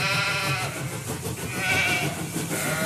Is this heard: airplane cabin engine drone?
no